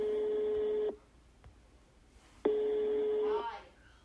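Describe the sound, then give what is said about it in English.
Two long, steady electronic telephone tones, each about a second, separated by a pause of roughly a second and a half, heard clearly with no one talking, while dialing a very long phone number. “We schedule a time to talk, and he sends me the longest phone number I've ever seen.”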